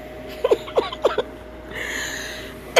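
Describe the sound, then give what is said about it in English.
A quick run of five short, sharp coughs, moderately loud, coming in uneven bursts before fading into a steady faint hiss with no talking. “See, I went and I stopped eating meat for a week, and that's when this cough developed.”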